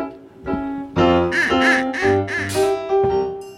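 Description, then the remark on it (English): A series of nasal, buzzy quacks from a duck whistle, sounded in quick bursts of varying length, loud, with a sustained harmonic drone running underneath. “I'll be on duck whistle.”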